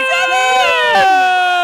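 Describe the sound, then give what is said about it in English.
An alarm blares continuously during a birthday-ball prize draw on radio station 93.5 Triple M, a loud, buzzy, harmonic-rich tone that holds steady with a slight dip in pitch partway through, while faint murmuring voices sit underneath. “Alarm's going around.”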